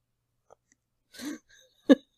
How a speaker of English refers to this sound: For any of you those hearing noise in the background, that is my pit bull, Jack, snoring. Say hi, Jack.